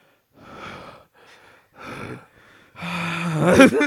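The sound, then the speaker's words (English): A voice imitates heavy, deep breathing close to the microphone: a few loud, rough inhales and exhales in a slow rhythm, ending in a strained, voiced gasp. “Deep ass breathing.”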